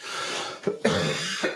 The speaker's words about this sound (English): I apologize for the cough. I will try to use the mute button when I do that if it's going to be too annoying.